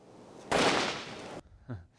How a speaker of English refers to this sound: And just before I go to bed, I throw a few firecrackers out the tent door into the dark as a way of scaring off the wolves, and hopefully it works.